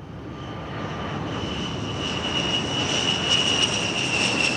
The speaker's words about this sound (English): More F-16s are sent up, this time from North Dakota. Now there are four jet planes flying in formation around the Learjet. Four fighter jets, four pairs of eyes.